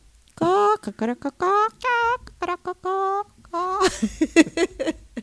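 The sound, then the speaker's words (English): A person imitates a chicken with a run of short, sing-song vocal bursts, fairly loud, ending in a rougher, longer squawking call. “All right, do the chicken again.”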